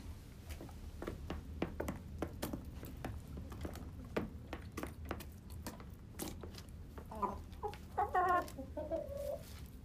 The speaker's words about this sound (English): There you go, live chicken recordings.